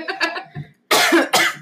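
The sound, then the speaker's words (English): Two loud, harsh coughs burst out, open and unmuffled, made without covering the mouth, following a brief throaty vocal sound and a short silence. “I know you got a couple more times to cough like that without covering your mouth.”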